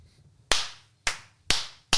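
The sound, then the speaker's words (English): Four sharp hand claps in a steady, slightly uneven rhythm, each a loud bright crack with a quick decaying tail, over a faint low hum and no talking. “Shall we clappy claps?”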